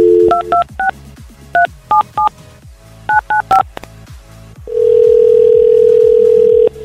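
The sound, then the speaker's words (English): Virgin Radio hosts B-Mac and Carly phone a listener: a quick series of touch-tone telephone keypad beeps in irregular bursts, clear, followed by a steady, loud ringing tone held for about two seconds before cutting off. “let's phone up and find somebody to give $1,000 to from previous keywords”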